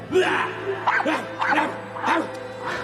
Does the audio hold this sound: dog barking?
yes